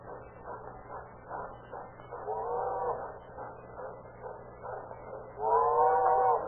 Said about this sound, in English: That train's due anywhere. I hear it now.